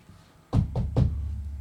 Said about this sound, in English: That's me knocking on wood.